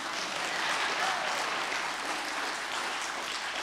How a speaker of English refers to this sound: Clap your hands right here.